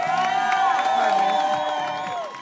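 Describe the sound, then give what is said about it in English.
A crowd at the Whitethorn Lodge volleyball Super Bowl in Pennsylvania cheers and applauds loudly for both teams of the men's final, Canada versus Tiki, with overlapping shouts and whoops filling the whole stretch before easing off slightly at the very end. “Let's give both teams a big round of applause.”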